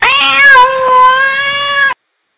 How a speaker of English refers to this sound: I love that cat.